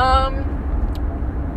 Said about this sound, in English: Oh my god, bro, why are you slamming on the brakes?